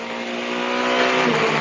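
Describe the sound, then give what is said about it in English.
Race cars roar past the start-finish line, heard from above it beside a crossover bridge, a loud, sustained high-pitched engine whine that swells toward the middle and dips slightly in pitch as they go by. No voices. “Tell you what, Jeremy, I'd forgotten how loud it was here, standing above the start-finish line as we are right next to one of the crossover bridges as the cars rattle out of the”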